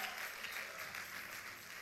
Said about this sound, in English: Everybody say deliverance. In fact, give God a praise right now by clapping your hands for deliverance. Oh, yes. Oh, yes.